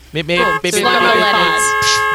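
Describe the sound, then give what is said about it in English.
A voice imitates a car horn with two beeps: a short note, then a longer steady, buzzy tone with bright harmonics, fairly loud, and a brief breathy sound at the end. “Beep beep. We'll get the. I'll get the car.”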